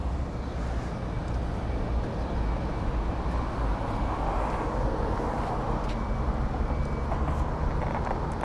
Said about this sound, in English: that right there is a Porsche 718 Boxer. The fastest car we've had so far in terms of how fast the roof comes down. Let's have a look.